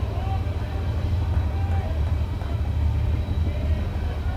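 A train rumbles past outside the right field wall of a baseball park in Ruston during a game, a steady low roar with faint metallic squeals drifting over it, continuous throughout against a murmuring outdoor background.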